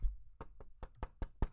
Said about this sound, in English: Knock on wood. That's me knocking on wood. Even more.